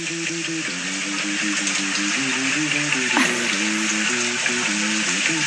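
Steady hiss of running water from a person's shower fills the whole stretch, with a low melodic tone stepping up and down over the spray.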